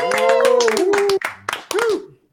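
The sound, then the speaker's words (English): Audience applause for a guitarist of a band on the Dave and Steve Show: a burst of steady, rapid clapping with loud voiced cheering or whooping over it, running for about two seconds before cutting off abruptly. “Let's give one more round of applause for Mr. ….”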